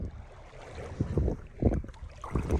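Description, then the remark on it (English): Shallow, cold water sloshes and laps in uneven low surges as someone wades in, with a steady rush of wind noise on the microphone and no voices. “So this is the water.”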